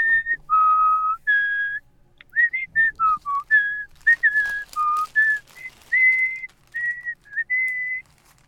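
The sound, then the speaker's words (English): A person whistles a film theme tune, clear and fairly loud, in short melodic phrases of held and quick notes with occasional pitch slides and brief pauses, with no talking. “Man, you're a good whistler.”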